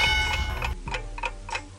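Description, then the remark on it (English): A game-show countdown clock ticks steadily, timing a 30-second answer, sharp rhythmic clicks repeating about every third of a second over a low humming bed, fairly loud with no one talking. “Your clock starts now.”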